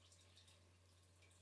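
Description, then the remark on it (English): Faint trickling liquid, like a drink being poured into a glass, with soft splashy bursts over a steady low hum and hiss. No one speaks. “Whoa, I didn't even taste it. I just poured it.”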